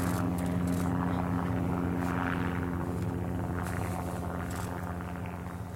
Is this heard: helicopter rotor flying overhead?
yes